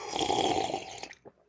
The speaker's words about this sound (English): The massive slurps that you're all used to, you know them, you love them.